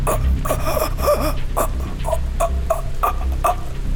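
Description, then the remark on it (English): A voice imitates a choking man's gasps: a string of strained, breathy rasps and croaks in short bursts, steady, over a low background hum. “As you get close to him, now within a couple of yards, all you hear coming out of his mouth is a gasping noise.”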